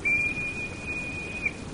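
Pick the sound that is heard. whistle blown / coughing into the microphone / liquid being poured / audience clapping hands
whistle blown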